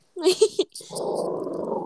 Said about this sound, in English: I have two little crusty white dogs, except one's black and white and one's brown and white, but they fight because they, I don't know, they're 2 year old, almost 2 year old guys, so they're crazy.